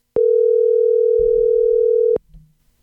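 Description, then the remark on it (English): A steady, loud telephone dial tone hums for about two seconds as a call is being dialed, then cuts off abruptly, leaving faint low rumbling and handling noise. “I've got the right number right here. Okay, all right. Then you should dial.”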